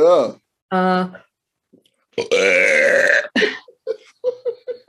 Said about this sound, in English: By the way, I burped on a … record. I'm not kidding.